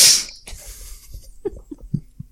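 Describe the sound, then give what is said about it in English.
A sharp, loud nasal sniff, taken while trying to identify a smell, opens, followed by a longer, softer airy inhale, then a few faint, low breathy grunts trail off. “Sniff a little, hold on, smell a little bit harder, past the grease.”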